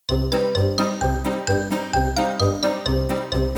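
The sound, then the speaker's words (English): A bouncy, circus-style clown tune plays loudly with no voices, built from bright tinkling bell-like notes over a steady oom-pah bass that repeats about every half second. “David, cue the clown music sounds.”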